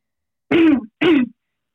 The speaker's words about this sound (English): I'm so sorry. I'm going to cough again. That's okay.